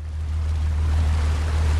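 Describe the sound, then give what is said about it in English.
Steady wash of ocean water around a small dive boat about 12 miles off Cambodia's coast, with a constant low engine drone underneath; continuous and fairly loud throughout, no voices. “2 weeks later, the recruits are on a small dive boat in the ocean, about 12 miles off Cambodia's coast.”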